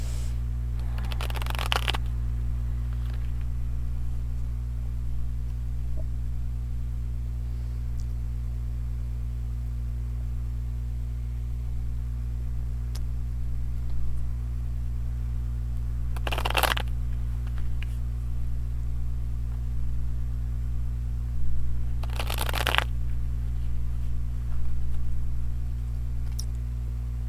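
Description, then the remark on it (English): Three short bursts of papery riffling as a deck of tarot cards is shuffled, spaced several seconds apart over a steady low electrical hum, with no one speaking. “So for now, I will shuffle.”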